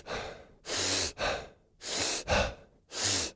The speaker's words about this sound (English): when you do an elongated inhale, a long inhale with a short exhale, it creates a more amplified state